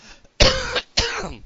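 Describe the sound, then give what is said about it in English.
Two loud coughs in quick succession, each a harsh raspy burst lasting about half a second, with a brief pause between them and no talking. “Hold on, got a cough.”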